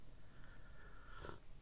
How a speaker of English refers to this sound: I'm going to sip some coffee right now.